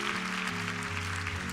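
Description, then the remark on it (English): An audience at a church service claps together to praise God, a steady, dense wash of applause, while sustained low organ chords shift underneath. “Let's clap our hands and praise God for their presence with us on this day.”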